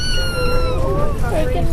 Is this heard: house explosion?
no